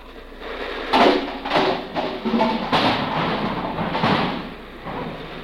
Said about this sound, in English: It's a miserable night. It's raining a regular California rain. Out here, it rains the hard way. The hard way. Up. Just listen to that rain.